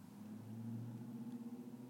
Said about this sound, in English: Says the car in the background.